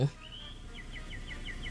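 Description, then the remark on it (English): Birds chirping: a thin drawn-out whistle, then a quick, steady string of short high chirps repeating several times. Fairly faint, with no one talking. “Oh, the birds.”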